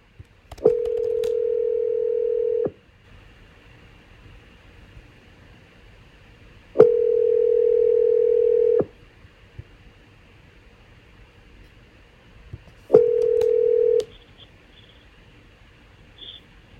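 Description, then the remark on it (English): A telephone line tone sounds in three steady, loud bursts of a few seconds each as phone lines are opened for callers, with quiet hissing gaps between them and soft clicks at each start. No one speaks. “Let's go ahead and open up the phone lines.”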